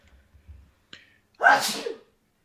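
A single loud sneeze bursts out after a brief sharp inhale, its breathy hiss lasting about half a second before cutting off into quiet.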